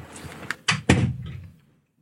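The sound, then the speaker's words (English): A door is pushed closed: a couple of quick knocks of the handle and frame, then a solid thud that fades into a short low rumble, with no talking. “Shall I go and shut the door?”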